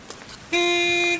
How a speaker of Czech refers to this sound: Klaxon troubí.